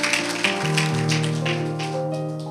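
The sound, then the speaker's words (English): A church audience claps for Jesus on Christmas Eve, a steady patter of many hands for a few seconds blending with sustained keyboard chords playing underneath. No one speaks. “That clap sounded like you're mad at the Falcons.”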